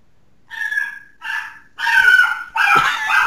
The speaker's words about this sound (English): was that a dog